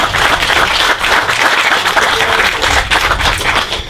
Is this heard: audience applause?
yes